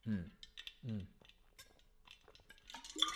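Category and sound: human body sound, drinking water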